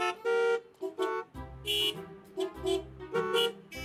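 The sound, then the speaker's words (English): Several car horns beep and honk in a choppy, overlapping burst, some short toots and some longer blares, with a deeper engine-like rumble underneath, loud, in a traffic jam where the cars are not moving. “Anyways, let's go see what all this beeping and honking is about.”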